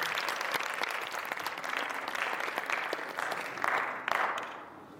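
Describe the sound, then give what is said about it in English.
An audience applauds a worship band steadily, a dense wash of overlapping claps with a few sharper individual claps standing out. The clapping holds at a fairly even level, then begins thinning out at the end. “A round of applause to”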